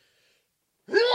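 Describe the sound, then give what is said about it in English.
A single sudden sneeze bursts out after nearly a second of silence, loud and breathy with a voiced edge, cut off abruptly at the end. “That was a sneeze.”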